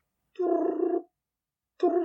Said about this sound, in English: Every phone has this dial tone now. It's the future.